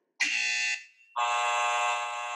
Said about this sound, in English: Okay, let me test my buzzer sound. Okay, me too.